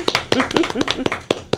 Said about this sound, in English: But there's a big change afoot. Something yes. new is going to happen, and that is that we expect very soon for you to be named the principal of Bayside Academy. Give her a round of applause, everybody. Yay!